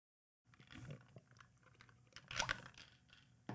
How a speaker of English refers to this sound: As I just dumped tea all over my face, I tried to take a sip of the tea and I took too big of a sip.